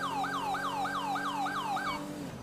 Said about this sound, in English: Try to use other sirens. They usually dive out of the way when we... Okay, or not.